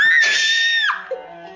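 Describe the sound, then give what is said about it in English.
A single loud, high-pitched acted scream held steadily for just under a second, then cut off abruptly, leaving only faint background noise. “You're supposed to scream.”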